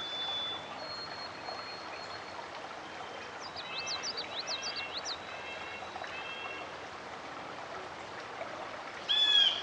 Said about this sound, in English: Thief! That's a blue jay calling.